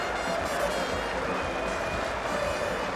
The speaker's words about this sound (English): Ben Stokes and the England dressing room standing as one to applaud the Kent opening batter. He has played handsomely in this innings.